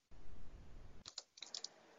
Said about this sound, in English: As somebody's looking, I hear somebody typing right now. You're looking it up right now.